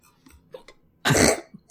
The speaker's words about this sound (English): Oh no, I got the hiccups.